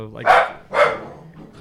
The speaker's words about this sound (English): That dog's excited about it.